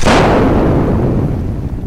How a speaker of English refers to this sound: A sound like a thunderclap shook the entire ship, and for a moment everything went white.